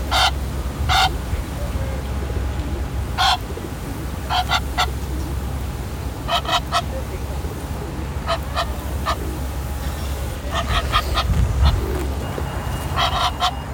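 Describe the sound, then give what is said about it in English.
Egyptian geese in St. James's Park honk repeatedly at close range, irritated by a microphone held near them, sharp harsh calls arriving in short bursts and pairs over a steady low outdoor rumble. “James's Park and I had a little chat with some Egyptian geese.”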